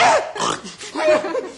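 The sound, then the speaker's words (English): A man's voice imitates a horse neighing, a short series of nasal, wavering whinny bursts, fairly loud, with no other sounds around it. “See, I'm a horse.”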